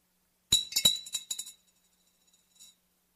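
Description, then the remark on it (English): Two copper coins clink into an offering plate: a quick cluster of bright, ringing metallic chinks that rattle and settle over about a second, then one faint last clink after a short pause. “She stands before the offering plate, and she takes those two copper coins.”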